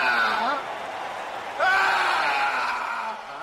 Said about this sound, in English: The scream is actually the new pope having a nervous breakdown. He can't face the crowd and retreats into his quarters.